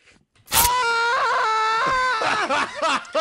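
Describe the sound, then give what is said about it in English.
A man lets out one long, loud, anguished scream that starts abruptly, wavers in pitch, then breaks into rougher, strained cries near the end, with nothing else audible around it. “screams, and a black cloak appears on him, and behind him appears his persona, Arsene.”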